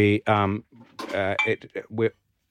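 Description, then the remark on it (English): Glasses clink together in a studio several times in quick bursts, bright ringing tones that clatter against one another over about two seconds, fairly loud and uneven in rhythm. “We're smashing glasses in the studio.”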